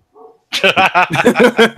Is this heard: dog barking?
yes